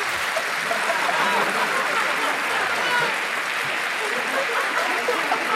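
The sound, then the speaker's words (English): Sustained applause from the audience of the TV program Q&A for Anthony Albanese, a dense steady clatter of many hands clapping at an even loudness for several seconds without letting up. “Anthony Albanese appeared on Q&A this week, and well done to host David Spears, who managed to get his question in quick enough to claim Anthony's applause.”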